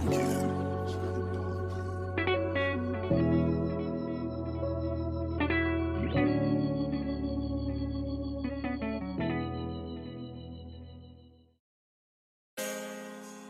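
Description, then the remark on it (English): An instrumental hip-hop beat with deep sub-bass and layered, echoing synth chords that shift every couple of seconds, fading out before a brief burst of sound returns at the end. “made this beat.”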